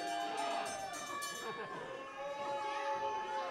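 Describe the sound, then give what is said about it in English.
A wrestling ring bell clangs repeatedly as a wrestling match ends, its bright metallic tones overlapping and ringing out over a continuous roar of crowd noise. “The bell is being rung.”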